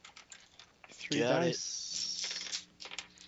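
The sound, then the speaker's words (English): A quick clatter of eight dice tumbling and knocking together, loud, with lighter clicks and rattles trailing off over a couple of seconds, rolled for a notice check in a tabletop game. “Eight dice, motherfucker. Threes.”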